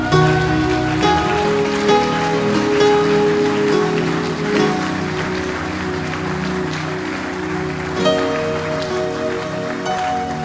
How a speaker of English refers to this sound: I wish that was the end, but it's not the end. You clap too early.